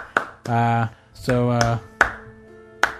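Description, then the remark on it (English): Several sharp, loud hand claps ring out at uneven intervals while a TV's volume display is watched, with brief voiced sounds between the first few claps and a short ringing tail after the later ones. “I'm just watching the volume on the TV when I clap because I normally don't get.”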